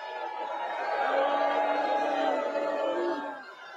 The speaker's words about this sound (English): You're not booing me, right?